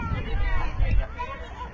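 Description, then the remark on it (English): A baseball crowd in a fan competition keeps up a steady wash of cheering and chatter, a dense murmur of many voices with a few brief swells and no single voice standing out. “Hopefully on the mics you can pick up what the crowds are going”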